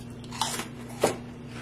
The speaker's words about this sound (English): You definitely get some crunch, which is great. They're substantial.